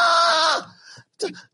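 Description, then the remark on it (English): A voice imitates a baby girl's scream: a loud, shrill, strained wail held for about half a second, then trailing into a few quieter vocal bursts. “She just screams off anything.”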